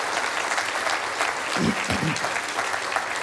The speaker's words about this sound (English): Let's applaud all those again who said yes to Jesus. We're so thankful for you.